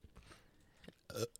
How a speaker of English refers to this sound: Nice burp.